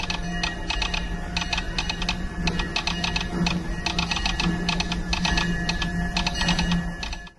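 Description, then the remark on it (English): Rapid Morse code telegraph clicking played at the New Orleans Square station in Disneyland, tapping out Walt's opening day speech: sharp dry clicks in quick irregular bursts and pauses, running steadily over a low constant hum with no voices. “I only have one, and it came to me when you were talking about the New Orleans Square humming, and it's the Morse code that is playing at the New Orleans Square station.”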